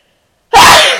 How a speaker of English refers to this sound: I'm going to sneeze.